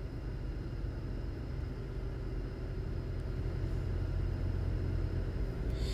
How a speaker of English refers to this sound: I'm in the car going home from work a little early, 6:30 rather than 7.